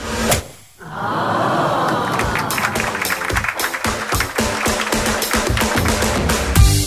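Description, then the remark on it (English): A sharp, crisp golf drive strike, then a small crowd of golf spectators breaking into steady, moderately loud clapping that carries on to the end, with no talking. “Let's see what Marshy's managed to do here with the crisp sound of a golf drive.”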